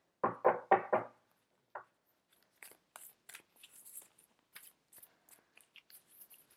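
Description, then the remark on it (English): Three quick taps and a lone knock open, then a steady run of soft, crisp, papery flicks as a deck of tarot cards is shuffled for a card pull, quiet, with no voices. “I need to shuffle the cards.”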